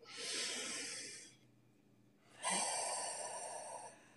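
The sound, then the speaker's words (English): A single deep breath: a long airy inhale, a short pause, then a slightly louder, rushing exhale. No one speaks. “One more deep breath.”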